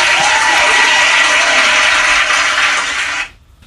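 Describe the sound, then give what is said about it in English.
A dense burst of audience applause, many hands clapping in a steady loud wash for about three seconds before cutting off abruptly into near silence. “Yeah, another round of applause, man.”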